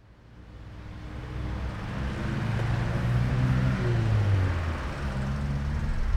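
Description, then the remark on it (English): Steady roar of traffic on a main road in Tbilisi, Georgia, heard while walking toward the Eliava Institute, with engines droning low and rising as vehicles pass, a continuous loud wash of noise and no voices. “It's a noisy enough walk next to a main road, but it's a pleasant enough view of the river.”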